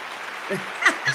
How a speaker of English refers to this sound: Round of applause.